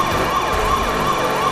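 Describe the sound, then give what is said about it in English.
A police car siren wails steadily, its pitch sweeping up and down in quick repeating cycles over a low rumble of traffic, loud and continuous with no talking. “Move over, cars. Move over. It's the police.”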